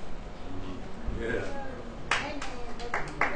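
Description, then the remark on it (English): Scattered applause from a small group breaks out, a handful of sharp, uneven claps over a low murmur of voices and room noise, brief rather than sustained. “Sorry, you don't have to clap.”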